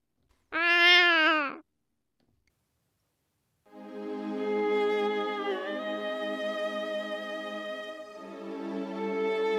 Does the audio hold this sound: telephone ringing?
no